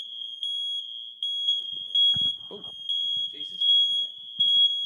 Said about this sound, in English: That is, what's going on? I don't know, I better go and have a check if that's all right. Go and have a check, there's a fire alarm. Oh. It's a fire alarm, it's the Michael Owen alarm.